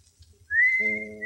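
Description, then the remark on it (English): Someone whistles a tune, one clear sustained note sliding upward and holding, with a lower humming tone joining partway through. Fairly loud, with no talking. “Can't he whistle any other song?”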